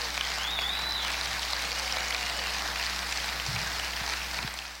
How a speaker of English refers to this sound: But can we give them one more time a round of applause?